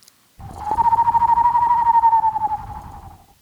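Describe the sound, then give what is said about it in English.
A person in a basement whistles an imitation of an eastern screech owl: a single steady, quavering trill held for about three seconds, fairly loud, over a faint low rumble. “That could be a new sound effect. Screech owl. Eastern screech owl.”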